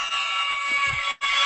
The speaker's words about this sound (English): And that buzzer means it's time for our lightning round.